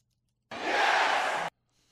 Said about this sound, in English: That yes, the one with the crowd doing it. Yes, yes, yes, yes. You do know that's like a wrestling drop, right?